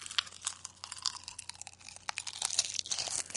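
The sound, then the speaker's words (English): Steady crunching and chewing of crisp food, with irregular sharp bursts of crackle repeating over a few seconds and no talking. “Yeah, keep crunching because this one's not coming back to me right now.”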